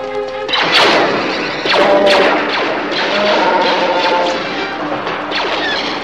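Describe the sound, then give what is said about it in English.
Heavy blast doors slam shut with loud metallic crashes and thuds, one after another, leaving a ringing, clattering rumble between the impacts. “Close the blast doors!”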